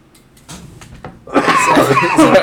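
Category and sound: human body sound, cough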